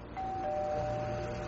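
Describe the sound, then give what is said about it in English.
The doorbell of a basement flat rings with one long, steady electric buzz that starts abruptly and holds for over a second, heard alone at a moderate level. “found myself ringing the bell to Greg's basement flat”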